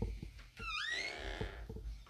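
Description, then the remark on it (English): A door swings shut with a sharp, rising hinge squeak lasting about half a second, followed by a couple of soft knocks as it settles closed. “Let me close this door.”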